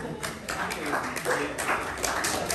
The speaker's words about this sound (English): Give it up for this lady. That means clap.